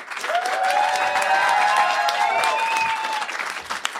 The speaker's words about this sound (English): I need a round of applause.